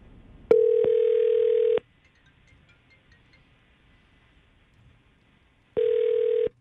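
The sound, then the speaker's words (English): An outgoing phone call's ringback tone, placed by the Mix 94.7 morning radio show: a steady electronic purr lasting over a second, a long pause of quiet line hiss, then the ring starting again. Clear, with no talking. “So we're going to call her right now and see if we can get some answers for you.”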